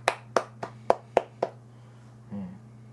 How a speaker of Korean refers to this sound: 박수 한번 보내죠.